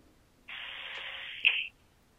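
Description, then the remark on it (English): About a second of band-limited hiss, like an open telephone line. A single sharp handset click lands near its end, just before the line cuts to silence. Nobody speaks. “As soon as I heard the click of the phone, I'm like, I was like, oh, this is going to be great.”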